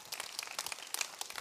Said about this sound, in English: If you're going to clap, clap. Don't like kind of clap. I mean, let's clap all the way.